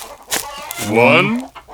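A couple of short clucks followed by a drawn-out, rising squawk from a hen in a chicken shed, fairly loud.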